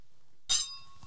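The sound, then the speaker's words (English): Drinking glasses clink together once in a toast, a bright chime that rings on with a clear, slowly fading tone. No one speaks. “And they cling really nicely, too.”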